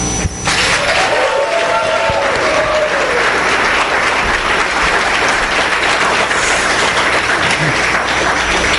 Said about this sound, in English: I need you to just give him the most roaring round of applause that you've got.